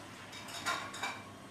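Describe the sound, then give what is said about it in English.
A steady hiss of water running from a tap, with two brief clinks of dishes rising above it. Nobody speaks; the sound is fairly quiet throughout. “I hear water running in the background from someone.”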